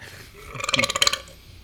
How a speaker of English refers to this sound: Your burps are like a fucking dinosaur fart. Jesus Christ. Oh my god. Smell it from here.